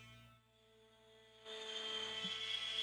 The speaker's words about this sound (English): There's a plane.